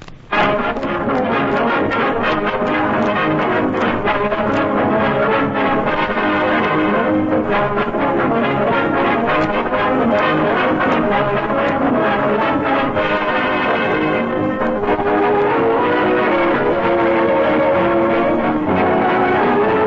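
Frank Black's Orchestra plays a lively song opening the Chevrolet Program radio show starring Jack Benny, with steady rhythm and sustained harmonies throughout. The sound is full and loud but somewhat muffled and thin in the highs, like an old radio broadcast, with no voices.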